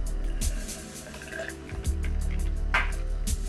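Red Cabernet wine pours steadily into a glass, a continuous gurgling trickle with a few drips and splashes, lasting a few seconds with no one talking.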